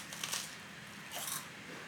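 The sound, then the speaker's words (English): Two crisp, crackly crunches from biting into a takoyaki-flavored corn snack chip, fairly quiet, with a brief pause between them and no talking. “But this is a takoyaki corn snack chip thing. Ooh, crunch.”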